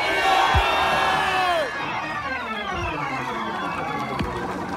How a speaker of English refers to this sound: Throw both hands up as loud as you can and just scream, shake me up, God.